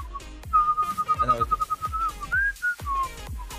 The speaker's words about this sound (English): I go through... weird phases where some days I can whistle really, really well, some days I can't.